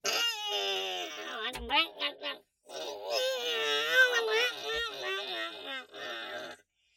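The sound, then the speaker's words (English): Strained, wavering shrieks and moans of a wounded alien in pain, bleeding and crawling across the ground, rising and falling in pitch over two bursts separated by a brief silence, with short choked cries between them. “His shrieks of pain, his prayers to some alien god no human will ever meet, go unanswered.”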